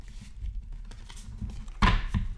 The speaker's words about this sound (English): I'm opening the little box. You can hear the card shaking, and I'm taking out the ones on the top that we have already read this year, and I'm going to shuffle the ones that are in the box that we will be choosing from.